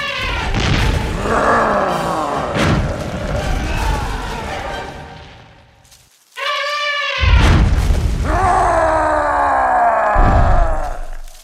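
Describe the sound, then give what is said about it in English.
The giant Buto Ijo and the Elephant King brawl in a sacred cucumber field: deep roaring groans and heavy booming blows, a brief lull, then a shrill trumpeting blast followed by more bellowing and thuds. “It was a mighty exchange of blows.”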